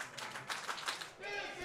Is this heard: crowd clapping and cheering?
yes